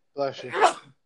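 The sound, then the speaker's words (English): A single sneeze: a short voiced intake rising into a sharp, breathy burst, then quickly fading out. It is about a second long and heard alone. “Bless you.”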